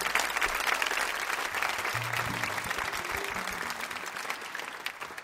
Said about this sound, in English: You fine folks are very talented clappers. That's some good clapping.